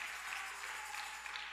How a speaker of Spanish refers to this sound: Denle fuerte aplauso si lo quiere hacer al Señor con el corazón.